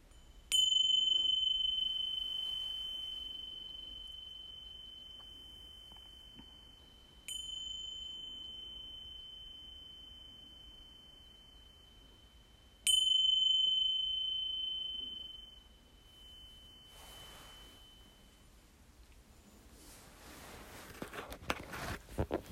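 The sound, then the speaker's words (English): Three clear metallic meditation chime strikes marking the start of a meditation, spaced several seconds apart, each ringing out with a long sustained tone that slowly fades; otherwise quiet, with a faint rustle near the end. “But let's officially start this meditation with the chimes.”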